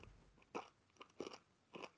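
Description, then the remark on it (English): Three sharp, close-up crunches of hard candy being bitten and chewed, spaced about half a second apart, loud and crisp right against the microphone with no talking. “I'm crunching here right now.”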